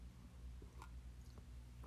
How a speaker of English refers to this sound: Hold on, I'm taking a sip of coffee.